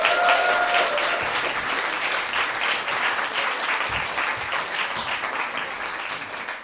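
An audience at a storytelling evening claps steadily for several seconds as an audience member is invited on stage to tell a story, a dense, even wash of many hands with no voices standing out; a couple of brief whistles ring out near the start.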